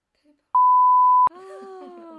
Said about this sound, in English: Oh, I'll beep it. Oh, beep it out.